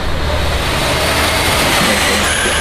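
Loud, continuous roar of racing car engines, a dense wash of motor noise with no talking, as three racing cars, the first a Trulli car, speed past in quick succession.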